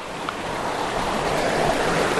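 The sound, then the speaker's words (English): A steady, dense roar of rushing water from a massive waterfall fills the whole recording, loud and unbroken, with no voices or other sounds rising above it. “I don't know how I'm going to get down to this waterfall. It's massive.”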